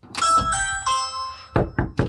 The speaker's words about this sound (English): And while no one was home when I rang the doorbell this afternoon, a neighbor did tell me this morning they spotted CMPD outside this person's home.